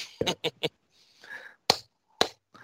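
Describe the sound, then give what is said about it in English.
Two sharp, loud hand claps land about half a second apart, following a quick run of three lighter smacks and a brief murmur of voice in between. “And until next time, boys, I guess that's two claps and a Ric Flair, and let's go Blue Jays.”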